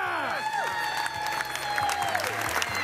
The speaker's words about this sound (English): A video recording from the event shows a crowd cheering as a contestant shakes hands with a panel of judges.